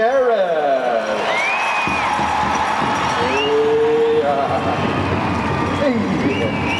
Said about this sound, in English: Let's welcome with a big round of applause